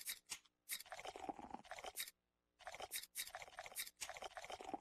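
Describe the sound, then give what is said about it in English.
Loud, crisp crunching from bites into crispy chicken wings, arriving in dense bursts with a brief pause in the middle, bright and crackly with no talking. “Chicken wings.”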